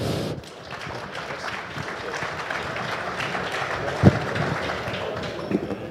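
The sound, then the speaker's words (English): A crowd applauds steadily for several seconds for the last panel of the day, a dense even patter of many hands clapping at a moderate level, with a couple of sharper thumps standing out near the end. “If we can please give a round of applause for our last panel of the day.”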